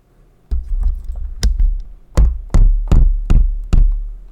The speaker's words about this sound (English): Okay, there's a knocking. That was definitely a knocking.